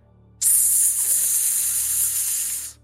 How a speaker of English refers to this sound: Right above you, you hear a hiss.